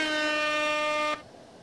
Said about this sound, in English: You hit that with the air horn.